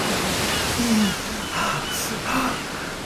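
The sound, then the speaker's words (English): A steady, full rush of ocean waves in the Philippine Sea, swelling and easing every second or so, with a few faint low tonal sounds drifting underneath. “The Philippine Sea.”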